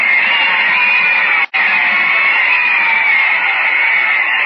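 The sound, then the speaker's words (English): A roaring stadium crowd cheers wildly at a game with only 3 minutes left to play, a dense, sustained wash of shouting and screaming voices that stays loud throughout, broken only by one abrupt split-second dropout midway. “The crowd is going wild, ladies and gentlemen.”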